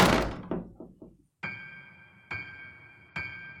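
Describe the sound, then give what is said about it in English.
A bathroom door slams shut with a heavy thud and rattling aftershocks, followed by three evenly spaced, ringing knocks that echo briefly. No one speaks. “Finally, it opened and I squeezed my fat ass inside, before slamming it shut.”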